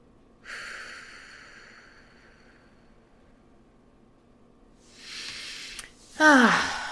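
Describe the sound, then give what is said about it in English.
A slow, deep breath drawn in through the nose during a relaxation breathing exercise, a held pause of silence, then a long, audible exhale that trails into a soft voiced sigh, clear with no talking. “Last time, inhale, hold, and exhale.”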